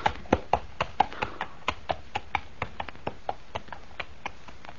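A horse's hooves clip-clop at a steady walking pace as it is led away to the stable, crisp hollow knocks that grow slightly fainter as the animal moves away. No voices.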